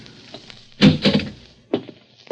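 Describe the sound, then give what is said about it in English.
A key from a set of keys is worked in the lock of the door to room 209 and the door is opened: a few solid clunks and rattles, two close together, then another thud a moment later. “It's locked. I got some keys. It's an easy lock. Here we go, kid.”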